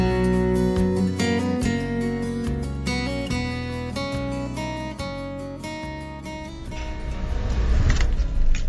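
A car engine turns over and settles into a steady, humming idle, then swells into a loud, rising roar as the vehicle pulls away in the final seconds.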